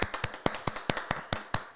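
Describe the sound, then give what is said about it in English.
A sparse, uneven smattering of about a dozen sharp claps, irregularly spaced and fairly soft, with no cheering and no talking. “Like really just lame clap.”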